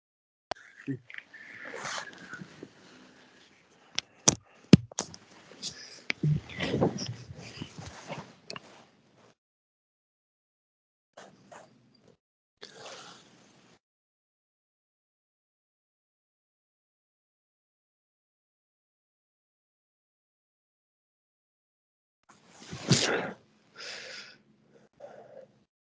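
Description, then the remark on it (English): A pet dog, Merlin, barks at an Amazon delivery at the door: a burst of sharp yaps over several seconds, then quiet apart from a couple of short barks and one final loud outburst. “Right, so sorry about the dog.”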